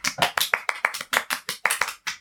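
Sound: hand clapping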